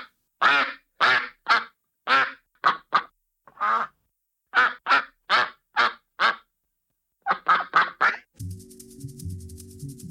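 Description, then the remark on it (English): Various ducks quack loudly, about fifteen sharp, nasal quacks in irregular bursts with brief pauses, then a short electronic jingle cuts in at the end. “You are going to hear a clip of various ducks quacking.”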